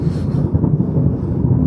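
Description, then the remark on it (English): A deep, steady rumble of thunder rolls low and continuous for a couple of seconds, heavy in the bass with no voices over it. “Oh, look, thunder.”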